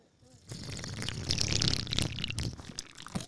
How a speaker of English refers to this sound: Yeah, we got to do the slurp again. Do a slurp on the mic.